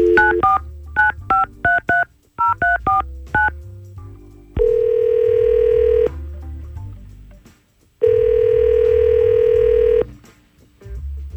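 A quick run of about ten short, bright touch-tone beeps as the Y100 radio morning show dials a phone number, followed by two long, steady ringing tones separated by a pause.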